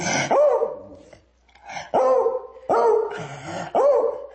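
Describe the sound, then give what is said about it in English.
A dog barks four times in quick succession, loud, each bark sharp with a harmonic, slightly gruff tone and short pauses between them. “Max, what's wrong? Is it a coyote?”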